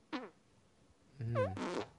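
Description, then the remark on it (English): Two armpit farts made with a hand and arm: a short squelchy burst, a pause, then a longer, louder, wetter flapping blast. “Oh wow, that was that's a good armpit fart, man.”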